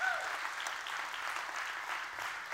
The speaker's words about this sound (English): So let's give all of them a great big hand clap this morning from Journey to welcome them.